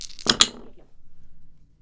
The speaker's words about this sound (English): Sorry, I hit my phone and I made noise.